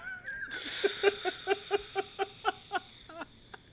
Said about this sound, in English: Wow, someone still didn't turn off the dishwasher.